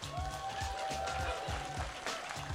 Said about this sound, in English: You got a round of applause, Chuck. I don't know if you heard that.